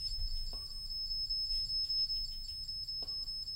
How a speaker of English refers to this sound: Which device is that? That is the K2. If you're the female soul, can you make it pause for a moment? If you're the older gentleman, would you make the K2, the thing you're touching, can you make that stop beeping?